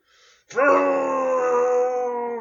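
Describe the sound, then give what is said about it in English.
A human voice lets out a loud, drawn-out monster-style growl that holds steady for about two seconds, preceded by a faint breathy sound. “I used to substitute it for a bad word, though, and I can still growl with it, like this.”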